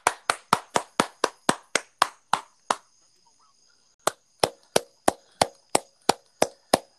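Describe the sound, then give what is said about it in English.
Applause from a single pair of hands welcoming a guest on a show: sharp, evenly spaced claps in a quick steady rhythm, a brief silent pause, then a second run of claps. No one speaks. “Let's give him a round of applause, ladies and gentlemen.”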